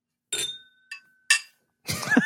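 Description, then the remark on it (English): Glasses clink together in a toast, three bright taps with a short ringing tone after each, followed by a brief burst of voice at the end. “Cheers. Mm, cheers.”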